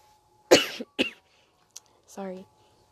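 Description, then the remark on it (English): A harsh cough from a person who is sick, followed by a second short cough, then a brief click and a throaty, voiced throat-clearing sound, with quiet pauses between. “Sorry for the coughing and stuff.”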